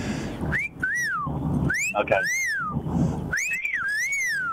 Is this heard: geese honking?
no